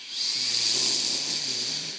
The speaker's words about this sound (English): All right, everyone. First, we'll do one quick sniff. Now, two quick sniffs. Now, one big, deep sniff.